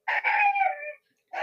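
A dog lets out a drawn-out, high whining yowl, fairly loud, then breaks off and starts another after a brief silence.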